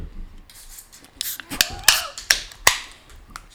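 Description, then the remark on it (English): Several carbonated drink cans being cracked open in quick succession, each a sharp metallic click followed by a brief hissing fizz, with faint rustling in between and no talking. “Let's crack these.”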